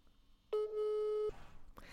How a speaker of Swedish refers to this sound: Svara då. Vi ringer mamma nu alltså.